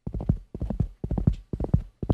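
The hooves of a saddled horse being ridden clip-clop in a quick, steady rhythm as it arrives in Lyozhna, landing in repeating clusters of sharp knocks, with no one talking over them.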